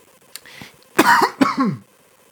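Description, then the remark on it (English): Two sharp, husky coughs in quick succession, fairly loud, with a faint click just before them and no talking around them. “No cough button needed.”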